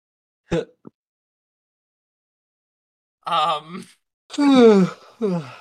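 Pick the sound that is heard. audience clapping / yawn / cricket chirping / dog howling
yawn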